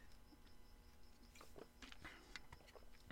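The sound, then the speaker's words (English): Quiet sipping of water: a few soft slurps and small swallowing clicks over a low background hum, with no talking. “I'm going to take a sip of water real quick, because for some reason, I'm yelling.”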